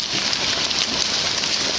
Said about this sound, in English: That might sound like rain, but it's actually fish. Hundreds of invasive Asian carp launching themselves through the air along the Mississippi River. The leaping fish have injured boaters, but that's the least of the problem.